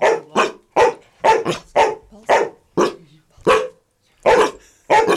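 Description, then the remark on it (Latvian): Two dogs, Jūle and Džēdžējs, bark in a radio studio during a Sunday morning broadcast in Latvia: about ten sharp, loud barks in quick succession with brief pauses between them, and no talking. “Un mums ir arī tātad divi suņi, kuri gatavi arī sasveicināties, Jūli un Džēdžējs.”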